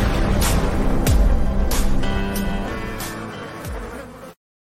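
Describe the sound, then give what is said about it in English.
A loud buzzing insect sound effect drones steadily as an opening buzz, punctuated by a few sharp swooshing bursts, then cuts off abruptly into silence. No one speaks. “The opening buzz is brought to you by Busch Light.”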